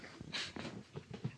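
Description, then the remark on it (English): A person mimics a dog's bark: one short, gruff, breathy woof, followed by softer throaty rasps that trail off. “Just like my pet dog. Rough.”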